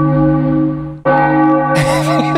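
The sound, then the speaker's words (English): A loud, sustained bell tolls with rich ringing overtones, briefly cuts out, then strikes again more brightly as extra clanging and wavering tones join in near the end. It is rung because the Phillies just scored on a Nick Castellanos home run. No one speaks. “That bell changed. That sounds like Bring Out Your Dead.”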